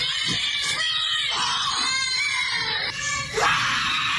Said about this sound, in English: Screaming in the kids' faces, and that's the kids crying. And they're crying for minutes. Like the whole room is crying, and you think this is smart.